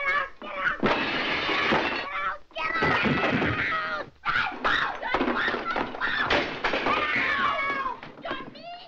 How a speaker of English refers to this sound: Because you're like, oh, she's going to go in and yell at him. But then she starts just tipping over all of the tables and everything. And it's like, what is happening right but now?